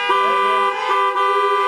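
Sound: car horns honking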